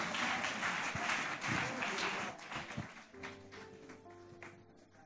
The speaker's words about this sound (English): Clap for them, clap for them, clap for them.